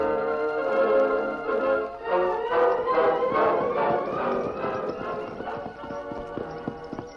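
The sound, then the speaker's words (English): Horse hooves clip-clop in a quick steady rhythm beneath a swelling orchestral score as a rider mounts a horse at a company corral and rides away unseen, the hoofbeats growing sharper before trailing off slightly. “As soon as the superintendent rode away, the workman, watching his chance, made his way to the company corral, where, mounting his horse, he rode away unseen.”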